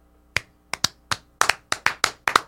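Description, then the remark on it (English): Short, sparse applause from an audience off camera: around a dozen sharp claps in an uneven rhythm, sometimes overlapping in pairs, with no voices. “There's a huge audience off camera.”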